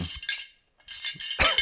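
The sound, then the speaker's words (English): Sobriety medals clinking together in a few quick bursts of bright jingling, with a short pause between shakes, fairly loud. “And you got your medals. Let them clink again for the people.”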